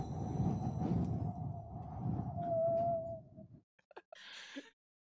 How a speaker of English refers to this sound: How about the sound of pouring out like a jug of water over a balcony? Over a balcony. Yeah, specifically. Okay, first we get the wind sounds.